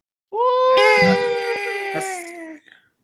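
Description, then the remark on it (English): The final death shriek of a fetal eldritch god as it blows up: a single sustained, wailing shriek with a strained, cry-like tone, loud, holding for about two seconds before trailing off, with harsh rasping noise layered underneath. “However, that last death throes of this fetal eldritch god, he just blows up. And then with one final shriek, he's gone.”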